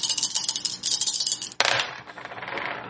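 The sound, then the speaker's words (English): Four dice rattle briskly in a hand or cup for over a second, then spill out with a sharp clatter and tumble to a stop on a hard surface, fairly loud. “But I am rolling four dice now.”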